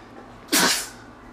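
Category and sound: human body sound, sneeze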